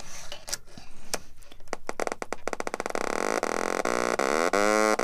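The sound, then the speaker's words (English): A few sharp clicks and snaps as a blue Little Bits power bit is snapped into an oscillator and a speaker give way to a loud, buzzy electronic tone rich in harmonics, its pitch wavering and gliding up and down as the oscillator is tuned. No one speaks. “So what I have is a power bit, which is blue, and I'm going to snap it into an oscillator, which is generating the sound wave, and a speaker. And now I'm tuning the oscillator.”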